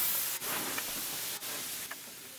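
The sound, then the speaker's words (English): An aerosol air freshener hisses in a steady, fairly loud spray, with a couple of brief breaks between long bursts and no voices. “It's important to keep your house smelling clean by using air fresheners such as Febreze.”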